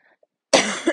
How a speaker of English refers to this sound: Excuse me, guys. I have a little bit of a cold, so you might hear me cough a little bit.